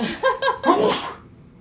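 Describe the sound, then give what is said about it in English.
A single loud sneeze: two short breathy inhalations build up, then a sharp explosive burst cuts off abruptly into quiet. “I have to sneeze.”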